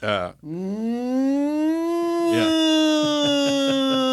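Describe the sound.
A person imitates a cow's moo with a long, wavering vocal call that rises in pitch and holds, then breaks into a rapid pulsing at the end.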